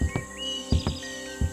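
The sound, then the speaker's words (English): Birds chirp faintly in the background over a steady ambient hum, with a few soft, irregular thuds breaking in. No one speaks. “I called forth the ambient sounds of the threshold, the soft tinkle of wind chimes, the gentle caress of a breeze, and the chirping of birds.”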